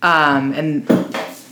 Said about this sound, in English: I gotta get adjusted. What? I can hardly hear you over the chair. We gotta find quieter chairs.